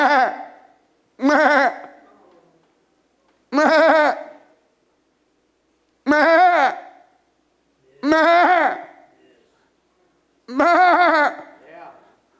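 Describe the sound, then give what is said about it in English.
A sheep bleats six times in a row, each loud, wavering call lasting under a second, with short pauses between them, and no one talks. “So the sheep is now lost. You hear it bleating.”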